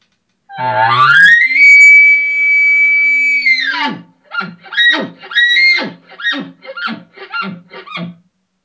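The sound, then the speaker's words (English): An elk challenge bugle blown on a game call: a rising whistle holds as a loud, high, sustained squeal, then breaks into about eight rapid, raspy grunting chuckles. No talking. “Okay, so boom, that's your challenge bugle.”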